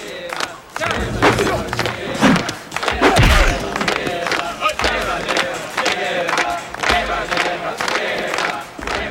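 A group of men chant loudly together while sharp claps beat out a steady rhythm, the voices rising into shouts over a constant crowd roar and occasional low thumps; the men surround two fighters as they fight.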